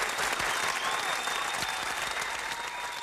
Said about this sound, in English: And I want to give a round of applause. Can we give a round of applause to Obama?